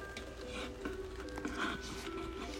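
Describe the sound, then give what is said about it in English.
Soft, steady rain from a storm pattering outside through an open window, a continuous hiss with faint scattered drips, fairly quiet, with no one speaking. “I think I'm yawning because I'm cold. And it's probably because of the rain.”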